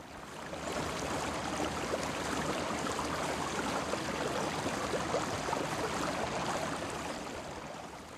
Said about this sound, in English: He wanted to shout, but the sounds he heard were just those of the river running swiftly under the bridge.